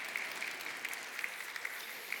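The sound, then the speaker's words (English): An audience claps steadily during a morning address, a dense, continuous patter of many hands, with a few sharper claps popping out of the wash. “You might not like how long it goes, but if you keep clapping, I sure will.”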